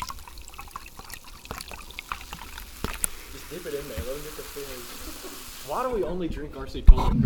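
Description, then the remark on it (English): RC Cola pours steadily into a cup, a hissing, fizzy trickle with small crackles and pops, while a voice murmurs over the second half before a sharp knock near the end. “is pouring some RC Cola in his cup.”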